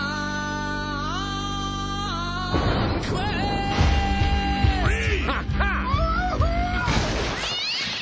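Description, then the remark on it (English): A cat growls low and steady, then bursts into loud hissing and rising, wavering yowls, agitated, with a final sharp hiss near the end. “You made the cat angry.”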